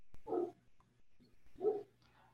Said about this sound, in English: Can you guys hear that dog? Somewhere in the distance, yes. A dog barks. Is that your dog? Right. No.